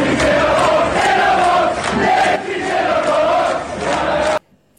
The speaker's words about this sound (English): This is from a soccer match that night that she had passed away, and a chant going up from the crowd.